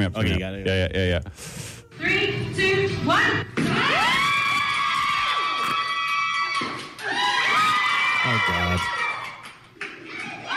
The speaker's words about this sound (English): She's a bodybuilder, so you'd expect her to have some strong muscles. Yeah. But she set the record by crushing 3 watermelons in 7.5 seconds.